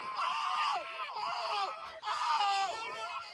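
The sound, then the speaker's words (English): People on a golf course screaming loudly and continuously in three long, wavering surges, their high strained voices overlapping with barely a pause between bursts. “That's … screaming with him.”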